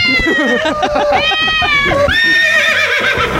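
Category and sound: animal, horse neighing sound effect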